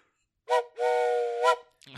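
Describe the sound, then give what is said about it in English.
A train whistle is blown twice to signal a transition, a short toot followed by a longer sustained blast with a breathy, chord-like tone, fairly loud, with no talking over it. “I need to transition us into a station, because a lot of what the movie does wrong blends into a particular station. I'd like you to blow”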